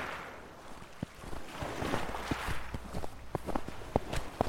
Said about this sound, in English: And hearing the slow crunch of snow beneath my feet, I felt like the only person on earth.